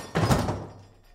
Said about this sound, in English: One blow from Robert's big boots splintered a door like it was matchwood.